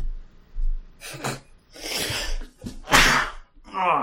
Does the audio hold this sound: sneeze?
yes